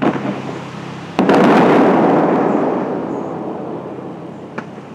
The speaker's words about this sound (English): The crew tests a few of the fountain's high-powered shooters.